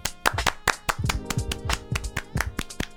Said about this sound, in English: So also, let's clap it up for Black.